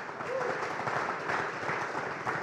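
A crowd claps steadily, a dense, even patter of many hands that holds at the same level from start to finish, with no voices rising above it.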